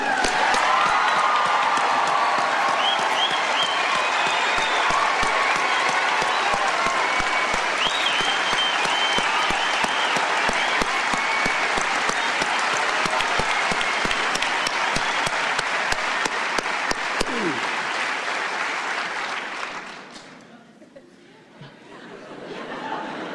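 A big crowd breaks into sustained, loud applause with scattered cheers and chatter mixed in, holding steady for about twenty seconds before fading away abruptly.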